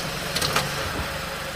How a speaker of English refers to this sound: He pulls into my parents' driveway in a white Ford Freestyle SUV.